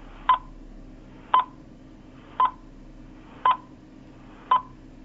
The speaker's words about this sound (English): So we're going to be quiet. You're going to hear the world's worst sound effect for a spoiler countdown and we'll be back in 6 seconds.